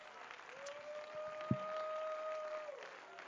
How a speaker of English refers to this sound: Now, all across this building, would you put your hands together for the King of Kings?